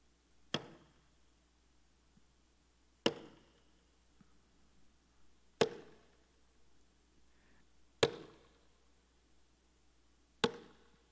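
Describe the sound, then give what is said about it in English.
A hammer strikes a nail five times in a slow, steady rhythm, about two and a half seconds apart. Each blow is a sharp, loud metallic crack with a short ringing decay, and no one speaks. “What they would hear, ladies and gentlemen, was the sound of a hammer.”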